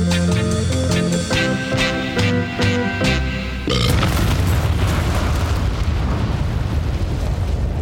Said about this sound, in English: They don't write explosions like that anymore.